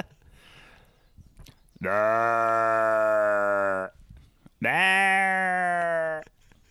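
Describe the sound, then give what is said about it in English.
A person imitates a ram's call twice, giving two loud, drawn-out bleating bellows of about two seconds each, separated by a short pause. “The last few days you've been doing ram calls. Will you do one?”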